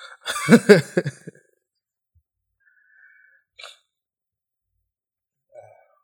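A single loud sneeze with a voiced, drawn-out burst, then near silence broken by a couple of faint, brief sounds.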